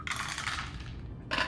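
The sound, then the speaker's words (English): Dice rolled in a tabletop role-playing game rattle and clatter across a hard surface in a quick burst, go quiet briefly, then clatter again at the end, landing on a 6 and a 5; soft, with no voices. “Looking at a 16 with a 6 and a 5 on the dice.”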